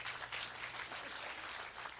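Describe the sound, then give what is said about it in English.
A crowd applauds a participant who played the adulterous woman in a John chapter 8 Bible story, a dense wash of clapping with a broad, hissy texture that holds at a fairly even level throughout, with no voices standing out. “Guys, give it up for Daryl, the adulterous woman.”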